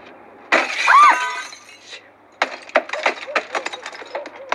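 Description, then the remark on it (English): A loud crash of window glass being smashed with a shoe to open a door, followed by a scatter of sharp tinkling shards falling and clinking in quick, irregular bursts. “Largely because I don't let people smash windows with them.”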